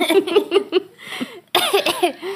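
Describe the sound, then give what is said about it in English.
A short run of rapid, throaty coughs, fairly loud, followed by a raspy breath and another strained, voiced coughing burst. No speech. “Sorry, start the sentence again after I finish coughing.”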